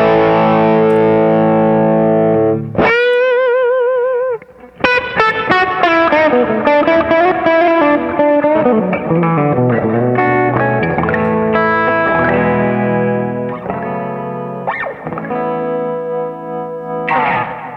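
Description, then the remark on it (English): An electric guitar plays through an amp that has only reverb, a sustained chord ringing out, then a busy stretch of driven, slightly distorted notes and chords, loud with a reverb tail. “Yeah, that sounds great. Now, does that amp have tremolo? The amp just has reverb.”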